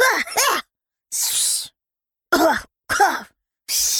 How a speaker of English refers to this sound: Cough! Fireball's thumb was so spicy it made him cough and made his tongue burn.